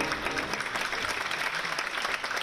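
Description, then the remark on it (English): An opera audience in a theater bursts into sustained applause as the curtains go up, a dense, steady wash of many hands clapping at an even, fairly loud level with faint crowd murmur beneath. “As the curtains go up, the spectators break into applause.”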